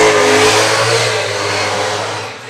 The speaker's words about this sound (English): Vroom, vroom. I don't know if our listeners heard very fancy car that drove by with a loud muffler.